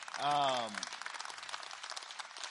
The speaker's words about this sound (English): So you guys should hand clap for that.